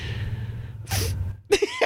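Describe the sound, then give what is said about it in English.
A quick, breathy sniff, followed moments later by a couple of short, sharp nasal bursts over a low background rumble. “Don't you sniff at me, you bitch.”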